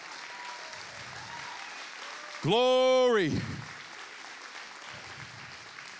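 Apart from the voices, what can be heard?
audience applauding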